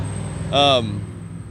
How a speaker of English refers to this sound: Sorry, we got a loud truck. Loud truck coming by.